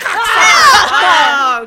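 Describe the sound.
Someone imitates an angry bull with one loud, strained vocal bellow lasting under two seconds, its rough pitch swelling and then sliding downward.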